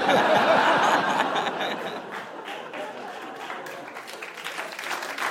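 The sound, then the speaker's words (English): A crowd at a live stage event applauds loudly at first, the clapping gradually thinning and softening over a few seconds, with some scattered laughter mixed in. “I feel like the crowd gave me an applause break because I am the dumbest person on this stage.”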